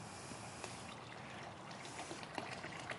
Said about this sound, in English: As soon as you start pouring, I'm going to time.